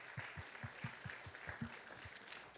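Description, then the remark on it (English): An audience applauds a pastor, his wife and daughters steadily, a dense patter of many hands clapping, with a faint regular low thumping running underneath throughout. “But would you give your pastor and his wife and daughters a round of applause?”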